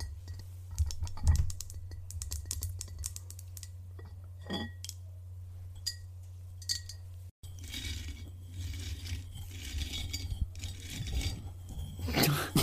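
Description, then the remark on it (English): Fingers tap and scrape a glass jar holding stale pretzels in a quick, uneven run of sharp clicks, some leaving a faint glassy ring, with denser scratchy rubbing toward the end over a steady low hum. “Okay, these stale pretzels that I'm eating out of glass jar absolutely smack.”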